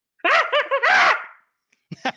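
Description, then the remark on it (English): A person imitates a chimpanzee scream: a loud, rapid series of rising-and-falling hoots swelling into a shrill, wavering cry, followed after a short pause by a brief breathy burst. “Are you going to do the chimpanzee scream?”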